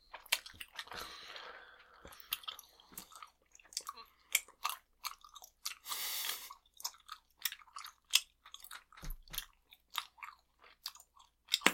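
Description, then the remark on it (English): Wet, smacking gum chewing with rapid irregular clicks and squelches, broken by a brief breathy puff of air partway through, as if attempting to blow a bubble. No one speaks. “This is where we're gonna learn that you can't really blow bubbles.”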